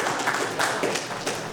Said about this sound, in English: She's looking hot today, every day. She's looking hot. Yeah, that's worth an applause, yes.